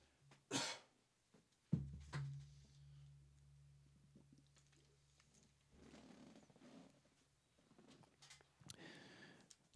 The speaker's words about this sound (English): I should have hit the cough button. My fault.